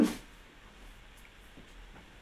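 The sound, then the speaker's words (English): A single stifled sneeze, held in to keep it as quiet as possible: a short, sharp, muffled burst of air right at the start, then only faint low background noise for the next couple of seconds. “I tried to make it so quiet I hurt myself.”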